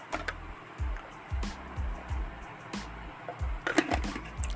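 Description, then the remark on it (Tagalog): Someone drinks water in steady, rhythmic gulps, about eight swallows spaced half a second apart, with faint wet sounds and no talking. “Teka lang, inom lang ako ng tubig.”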